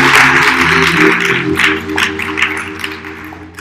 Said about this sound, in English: One more time, give God a round of applause.